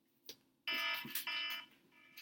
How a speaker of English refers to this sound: you got a timer. So the timer means that you have to answer a question.